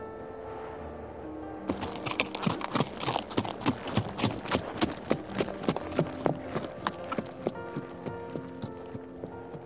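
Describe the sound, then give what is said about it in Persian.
Horse hooves clip-clop in a quick, steady rhythm, starting after a brief quiet moment and continuing clear, with a faint tonal background underneath. “اسبای وحشی همیشه بی سوارن.”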